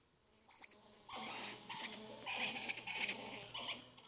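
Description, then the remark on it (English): A squirrel's calls: a run of sharp, raspy chirps and chatters in quick bursts, high-pitched and fairly loud, with no talking over them. “The answer is squirrel.”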